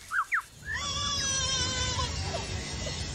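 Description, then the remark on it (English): A lyrebird imitates a baby's cry: two short rising wails followed by a sustained, harmonic wailing cry with warbling pitch, clear over a low background rumble. “No, that's a lyrebird mimicking a baby.”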